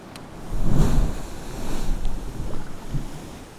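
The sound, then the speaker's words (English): Choppy sea water sloshes and slaps around a small kayak held about 4 meters from the entrance to a sea cave, in irregular swell surges, with a low rumble of wind buffeting the microphone and no voices. “My kayak just rides the lumpy sea, perfectly stable.”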